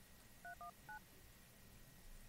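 Three quick touch-tone beeps from a phone keypad being dialed, each a short dual-pitched tone, over a quiet low background hum with no one speaking.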